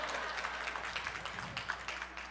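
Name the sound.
audience clapping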